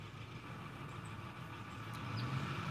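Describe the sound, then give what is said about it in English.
A mail truck's engine rumbles at a steady idle-like drone, growing slightly louder over a few seconds as the truck approaches, with no talking heard. “The mail truck is coming.”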